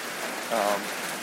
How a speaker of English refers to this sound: It's a rainy night. It came up quick. It's kind of like one of those storms you don't expect. I just want to give you a little bit of rain sound.